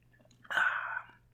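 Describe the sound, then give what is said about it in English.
A single sip of pumpkin beer after a toast, a short airy slurp lasting about half a second, standing out against an otherwise quiet background with a faint low hum. “Here, cheers to that, buddy. Cheers. Yeah, here we go.”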